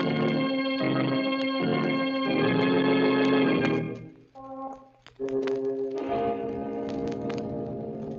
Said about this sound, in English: Somewhere in that blackness, a voice is whispering. Whispering. And it continues to whisper until it is drowned by a clock striking 12 for... Murder! At midnight.